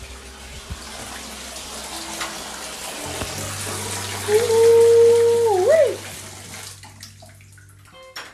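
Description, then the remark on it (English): A bathtub fills for a bubble bath with a steady hiss of running water from start to finish, while a man briefly exclaims over it partway through. “Let me check on this water.”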